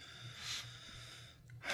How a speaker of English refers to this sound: Okay, so cheers to... rum in the morning. Yeah, cheers. And I'm just going to actually sniff this instead of just taking it straight to the face.